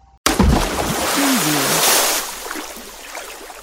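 A sudden, loud splash of water bursts in and churns for a couple of seconds before fading into a soft, trickling wash.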